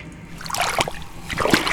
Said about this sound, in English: Oh, Professor! The floor is covered in several inches of water! My shoes are soaking wet!